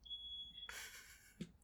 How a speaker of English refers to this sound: Our smoke alarm is going off.